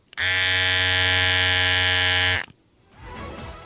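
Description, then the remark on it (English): A loud, steady electric razor buzz runs for a little over two seconds with a rich, even hum, then cuts off abruptly, leaving faint murmuring voices in the background. “I did see the electric razor.”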